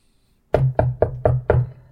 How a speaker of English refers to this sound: Arthur's going to knock loudly on the door. I want to hear the way you knock.